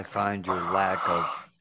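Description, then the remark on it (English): A voice imitates Darth Vader's heavy, mechanical respirator breathing in three drawn-out, rasping pulses, fairly loud, with no other sound around it. “I find your minus lack, the heavy breathing.”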